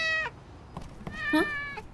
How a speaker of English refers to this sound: Must be something important. Oh, no, it's probably one of your kittens, isn't it?